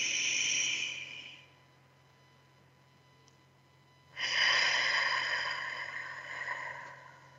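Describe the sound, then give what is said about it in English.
Slow, deep breathing: one airy breath trails off, then after a few seconds of quiet a long, steady breath follows, with no talking. A person breathes in deeply through the nose and out through the mouth, as if through a straw. “This type of breathing in through your nose, breathing in deeply, out through your mouth, like you're breathing through a straw, helps you bring air and oxygen to every cell in your body.”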